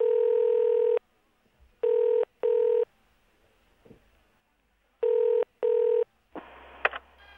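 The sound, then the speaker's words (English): A telephone ringing tone heard down the line, a steady electronic purr in a long first burst, then two double-ring pairs separated by quiet gaps, ending with a click as the call connects. “It's ringing.”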